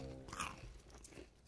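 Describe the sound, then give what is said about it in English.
Loud crunching of someone chewing Wheat Thin wheat crackers, with a few sharp crackly bites in quick succession over a low hum, no talking. “mine is Wheat Thins, bad for the mic.”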